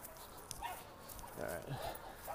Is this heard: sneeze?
no